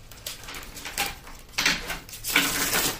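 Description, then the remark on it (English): A deck of cards being shuffled, with several quick papery riffling bursts that swell and fade, the last one loudest, and no voices. “I'm just going to do a quick shuffle on this deck.”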